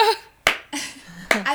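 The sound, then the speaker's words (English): Two sharp, slow hand claps spaced nearly a second apart, crisp, done as the Orson Welles Citizen Kane slow clap, with someone talking softly in between and around them. “Doing, like, the Orson Welles Citizen Kane clap over here.”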